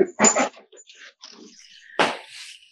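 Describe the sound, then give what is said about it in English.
A dog that is locked out whines and yelps in short bursts, a thin high whimper trailing between sharper cries, sounding a little muffled. No one talks. “Apologies, the dog's locked out now.”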